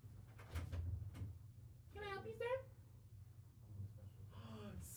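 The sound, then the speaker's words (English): A few sharp metallic clicks of a door being unlocked for a guest, then a short rattle as it swings open, with people talking in the background. “I think door's locked. No, it's not. Did you lock it? Maybe I did. Hold on.”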